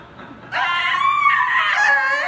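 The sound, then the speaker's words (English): A voice mimics a baby's scream: after a brief quiet moment, one loud, high, sustained wail rises and holds steady for nearly two seconds, shrill. “Your mom had to take the binky out to wipe your face and you were screaming, changing colors because you weren't done with it.”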